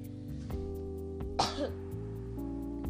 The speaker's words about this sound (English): I'm sorry. I had a cough. If you hear that, like, I don't have corona. I'm perfectly healthy, I think.